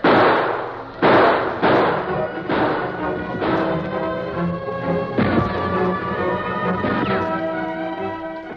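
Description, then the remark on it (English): Rifle shots crack out one after another at a steady, unhurried pace, each loud report ringing out briefly over a sustained, droning tonal background. “Now open fire and keep it going. Not too fast, but steady.”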